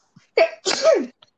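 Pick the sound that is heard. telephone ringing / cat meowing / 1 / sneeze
sneeze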